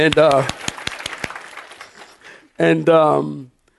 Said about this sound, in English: And there was another couple here, and I can't think of their names, so clap for them too.